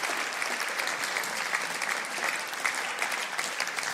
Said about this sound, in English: Come on, let's give a round of applause to God for everything he has shared through us tonight.